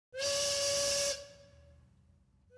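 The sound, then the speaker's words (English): A factory steam whistle blows for the noon break, giving one loud, hissing blast lasting about a second, then cuts off and leaves a fading tone ringing into the background. “After the break whistle at noon, Tobias joined, then wandered away from the other young workers.”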